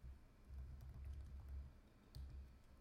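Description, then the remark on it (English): Faint, scattered computer keyboard key clicks tap out irregularly over a low, steady rumble, with no talking. “Okay, I don't know if you can hear my keyboard clicking, but you gotta tell me about Jerry Gray.”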